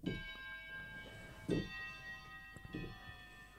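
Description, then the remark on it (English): A church bell chimes the quarter hour, three fairly soft strikes about a second and a half apart, each blending into a long, shimmering hum of overlapping tones that carries through the whole passage. “A church bell chimes.”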